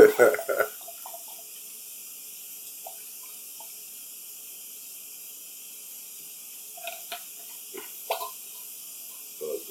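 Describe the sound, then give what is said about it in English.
A drink pours quietly as a faint, steady liquid trickle, with a few sharp clinks and clatters at the start and again near the end. “Wait till my drink gets to pour.”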